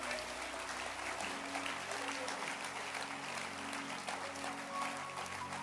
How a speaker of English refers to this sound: Can you clap your hands for this book?